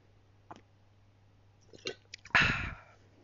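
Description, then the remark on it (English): A sip of wine: a few faint clicks, then a short, loud breathy slurp that trails off. No one speaks. “Another sip of the wine.”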